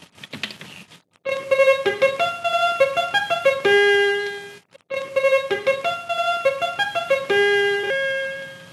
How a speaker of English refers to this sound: Will you play some effects? Yes, certainly. Here is a trumpet and echo.